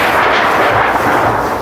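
Thunder rolls in a loud, sustained roar during a storm, a dense rumbling wash of sound that holds steady for the whole moment, with no voices.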